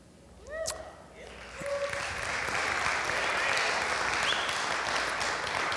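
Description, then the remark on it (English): A crowd at a church service breaks into sustained applause, many hands clapping in a dense, steady wash that swells within the first second or two and holds loud to the end, with a few brief tonal sounds near the start. “I was hoping you would applaud.”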